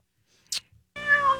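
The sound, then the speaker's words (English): A single drawn-out cat meow, fairly loud, with a clear tonal wail that rises slightly, preceded by a brief soft breathy rustle and a moment of quiet. “His cat neighbor?”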